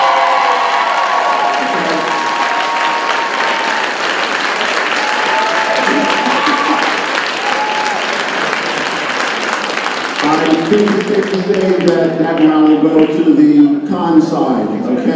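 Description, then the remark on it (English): An audience at a debate on vaccines claps steadily for about ten seconds, a dense, even wash of applause, then voices rise over the fading clapping as someone begins speaking. “And if you feel that vaccines basically are unsafe, you're still unsafe, you probably would not give it to your children, please applaud.”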